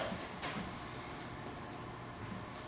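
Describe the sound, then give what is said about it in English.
A faint door makes a few brief knocks and rattles, spaced out over a steady low background hiss. No one speaks. “Like you said, it's the door, huh?”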